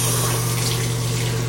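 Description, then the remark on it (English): Water runs steadily from a bathtub tap with a constant rushing hiss and a low, droning hum underneath, loud, no voices, as the tub fills with the drain closed. “So let's get the water going here.”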